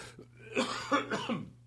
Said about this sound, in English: Oh, what am I doing that for? Now I'm going to cough all over again.